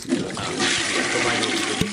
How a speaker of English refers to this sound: The flush transition.